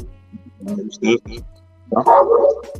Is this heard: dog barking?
yes